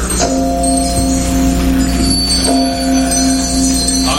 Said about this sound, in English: His glance happened to rest upon a disused bell, and as he looked, he saw this bell begin to swing. What? What's that?